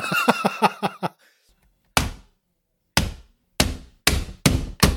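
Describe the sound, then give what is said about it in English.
A hammer smashes a plastic VHS videotape cassette: a brief rattling clatter, then five loud, sharp blows, coming faster toward the end, with no one talking. “That's it smashed with a hammer.”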